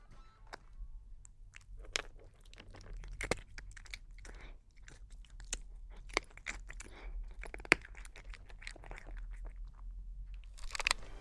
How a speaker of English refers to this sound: And this is my cat eating his biscuits.